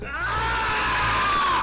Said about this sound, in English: Okay, in that case, I'm going to yell, you ready, guys? It's going to be loud, so brace yourself.